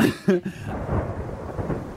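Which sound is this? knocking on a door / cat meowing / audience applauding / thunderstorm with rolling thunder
thunderstorm with rolling thunder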